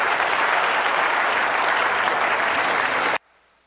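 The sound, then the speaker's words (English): An audience clapping steadily and loudly for about three seconds, a dense wash of hand claps that cuts off abruptly into near silence. “I would give him a round of applause.”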